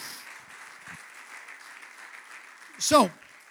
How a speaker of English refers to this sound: If we're going to clap a little, let's all clap. Amen.